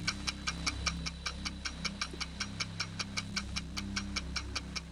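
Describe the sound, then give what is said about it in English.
A game show countdown clock ticks steadily and rapidly with 35 seconds on the clock, sharp evenly spaced clicks about four per second, over a low humming musical bed with no voices. “All right, 35 seconds are on the clock.”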